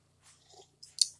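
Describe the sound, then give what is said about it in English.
A quiet slurping sip of a hot peppermint mocha coffee, followed by a couple of sharp wet mouth clicks as it is swallowed. No one speaks. “But before we get into all the festivities, first, I'm going to take a sip of coffee.”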